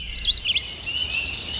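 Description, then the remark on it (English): Whistled, sweeping notes of an Eastern Whip-poor-will ring out in a quick phrase, with a fainter repeat after a short gap, over a steady high insect hum in the night air. “Lots of folks have sung about today's featured feathered friend, the Eastern Whippoorwill.”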